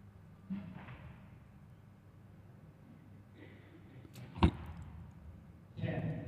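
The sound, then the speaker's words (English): A single sharp thwack of an arrow striking an archery target during an archery final in Portugal cuts through a low, steady background rumble, with faint muffled voices and movement around it. “Boom, nice shot.”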